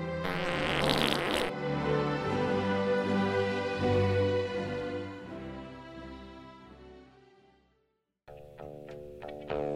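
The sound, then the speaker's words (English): A long, loud, buzzing fart sound stretches for several seconds with a rich, harmonic tone, briefly drops out, then returns with another short sputtering burst, processed with distortion and effects. “A new expose on farting.”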